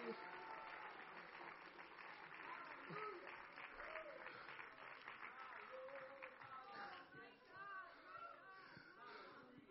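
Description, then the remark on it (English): A large church audience stands and claps their hands in praise of God, sustained, dense applause with scattered voices calling out and cheering over the steady wash of clapping. “Stand to your feet and clap your hands and love Him for a moment.”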